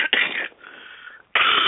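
human body sound, coughing and throat clearing

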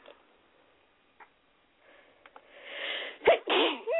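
human body sound, sneeze

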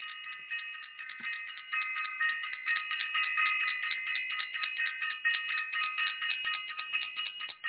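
signal or alarm, bell ringing

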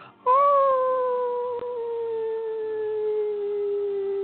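animal, wolf howling

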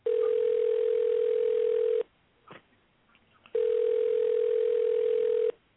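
signal or alarm, telephone dial tone

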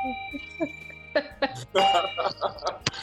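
signal or alarm, bell being struck

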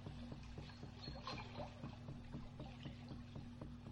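nature, river water trickling

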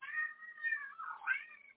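animal, cat meowing

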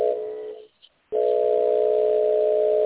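signal or alarm, fire alarm beeping

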